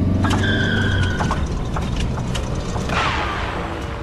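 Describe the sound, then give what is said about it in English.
A car engine's steady low drone and high whine run for about a second, then cut out abruptly, leaving scattered mechanical rattles and a brief rushing whoosh near the end. “They cut the engine.”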